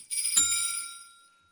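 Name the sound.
bell ringing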